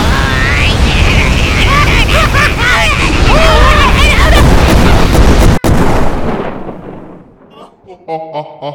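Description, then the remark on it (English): A loud, roaring cannon blast fills the first six seconds with dense, chaotic rumbling and crackling noise, then fades out abruptly before a brief voice speaks at the end. “Wait a minute, you countered a multi-stick tornado with the cannon. The oldest, stupidest, most overdone sound effect we have.”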